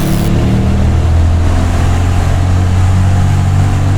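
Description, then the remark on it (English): A truck or SUV engine rumbles steadily with a deep, loud drone, holding constant throughout without any voices, as the vehicle comes inbound off a country road at night with its headlights on. “We've got a vehicle. Looks like a truck or SUV inbound off the country road.”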